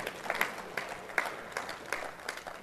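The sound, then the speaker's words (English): A round of applause from a group for a brother after a sermon, with dense overlapping claps spread across the upper range and a few sharper individual claps standing out, steady and moderately loud throughout with no voices. “Get that brother a round of applause.”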